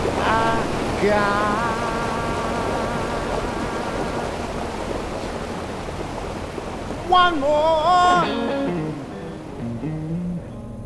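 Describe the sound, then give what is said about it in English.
Loud, steady roar of rushing water fills the whole stretch without pause, with a couple of brief wavering tonal calls rising above it near the start and again toward the end. “Water roar.”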